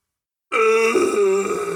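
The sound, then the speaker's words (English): A single loud voiced grunt, low and strained with a rough, guttural edge, held for over a second after a moment of silence, like someone groaning in exaggerated frustration, imitating the horror clown Art the Clown wanting Halloween candy. “ugh. Makes his Fart the Clown face, and he's got his trash bag, and he just wants some damn candy.”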